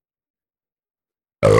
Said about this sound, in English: Just makes me burp a lot.